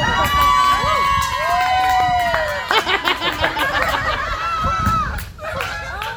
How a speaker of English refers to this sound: Even the geese are shouting out, amen.